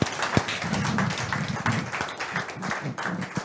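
An audience gives the Lord a clap offering, clapping steadily, a dense patter of many hands with faint voices mixed underneath the sustained applause.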